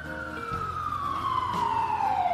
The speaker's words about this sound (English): The ambulance sirens sounded in the neighborhood with such shrillness that it frightened the animals in the zoo.